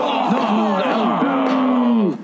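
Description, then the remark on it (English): Loud, drawn-out shouts of disgust from a group of soldiers, a sustained groaning cry with a wavering, mid-pitched tone that rises slightly and then trails off after about two seconds, with no words spoken. “The other soldiers agreed by shouting in disgust.”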